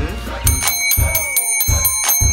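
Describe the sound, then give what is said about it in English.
During a quiz game, players strike a bell again and again in quick succession to answer, its bright metallic rings layered over one another, loud, with muffled thumps and background voices underneath. “You already hit the bell.”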